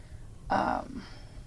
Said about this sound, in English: And again with the throat and the breathing.